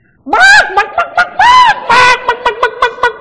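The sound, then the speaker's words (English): A voice imitates a stadium crowd of thousands mocking a player walking off the pitch, making chicken noises and flapping their arms: loud, high warbling squawks followed by a quick, rhythmic series of short clucks, with no words spoken. “They started making chicken noises and flapping their arms.”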